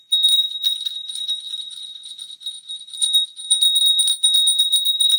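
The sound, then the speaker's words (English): A small, high-pitched bell rings steadily for several seconds, struck in quick repeated jingles that keep its bright tone sustained and shimmering, with no voices. “My bell has been calling to me as well.”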